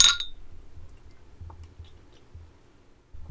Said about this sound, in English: So, Tim Sale, rest in power. We're going to clink it up to you.